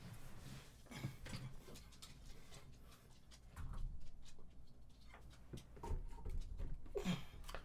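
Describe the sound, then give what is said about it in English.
Irregular clicks, taps and soft thumps of a dog scrabbling and pawing at food on a counter, trying to grab garlic bread, with occasional rustling. Nobody speaks. “Sorry, my dog. I didn't realize he was trying to grab the garlic bread.”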